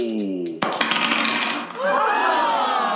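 A short burst of hard clattering as dice tumble and bounce across a tabletop, several quick sharp clicks, followed by a bright musical sting.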